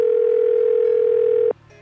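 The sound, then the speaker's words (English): A telephone ringback tone sounds as one steady, loud electronic burst for about a second and a half, then cuts off abruptly, leaving a faint low hum. No one speaks. “still ringing.”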